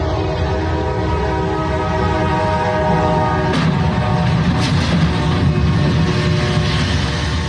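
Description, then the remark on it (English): A train rumbles through a crossing with steady horn-like tones, not slowing or braking, then a sudden sharp crash midway as it hits a truck left on the crossing, followed by another bang and continued heavy clattering noise. No one speaks. “You can hear the train coming through. It doesn't slow down.”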